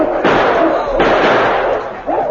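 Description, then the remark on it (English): Two loud, sharp gunshots, fired at wolves charging sled dogs, crack about a second apart, each leaving a harsh, noisy rumble that carries on beneath a brief rising yelp near the end. “Come on, pour lead into them.”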